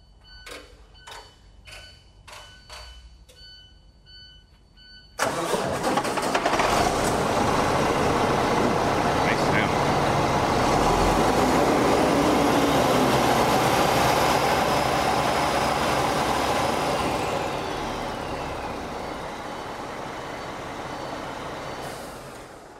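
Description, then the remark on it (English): A diesel truck engine with its exhaust taken off chugs with rhythmic clattering pulses, then abruptly roars to wide-open throttle, holding a loud, sustained rev before easing slightly near the end, letting out a little puff of black smoke. “So now that you can see, we went ahead and cranked that up, revved the throttle up, wide open throttle, and we saw just a little puff of black smoke.”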